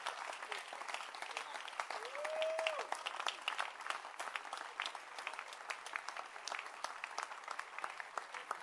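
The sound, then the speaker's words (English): A church audience applauds steadily for a lady shepherd, many hands clapping in a dense, continuous patter for the whole stretch, with a short rising whistle-like cry cutting through early on. “So clap your hands for the lady shepherd who was in labor and was bursting.”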